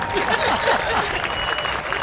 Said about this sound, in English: Yeah, let's unpack that. I like that. We need applause for that one,